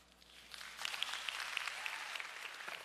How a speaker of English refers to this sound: Yeah, you can clap even though he's not in the room.